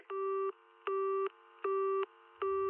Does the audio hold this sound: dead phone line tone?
yes